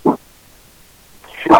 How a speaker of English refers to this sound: My dog's barking.